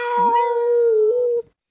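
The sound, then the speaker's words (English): A cat lets out one long, loud yowl, swooping up at the start and then holding a steady, piercing wail for over a second before cutting off. “Try to harmonize this cat.”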